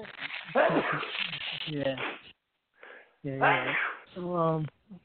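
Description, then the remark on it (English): A few abrupt, voiced bursts in close succession, ending with a loud sneeze-like outburst before the sound cuts off. “Bless you.”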